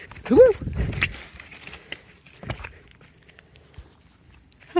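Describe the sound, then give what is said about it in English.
A fly buzzes briefly near the microphone at the start, loud and fluttery, then drifts off, leaving a steady thin high-pitched whine and a few soft knocks. “I think that was just a fly of some sort.”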